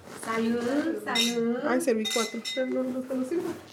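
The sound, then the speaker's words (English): Wine glasses holding a young Lambrusca wine clink together a few times in a toast, bright and brief, while several people talk over one another. “So if you right now, if you guys grab your glass.”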